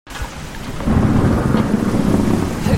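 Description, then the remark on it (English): A heavy thunderstorm, heard from under a shop window, roars steadily, with dense pouring rain and a deep rumble of thunder building and swelling after the first second, loud, with no voices. “you can hear this. I'm hiding under a shop window. It's like some kind of tropical storm.”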